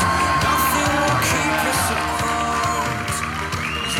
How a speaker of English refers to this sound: All right, that was actually pretty lame. Why don't we give Jesus a real round of applause?